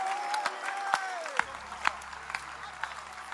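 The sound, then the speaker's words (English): An audience claps for the Lord Jesus, with sharp, scattered claps over a dense bed of applause. A sustained tone slides downward at the start, and a low hum enters partway through. “Clap for the Lord Jesus.”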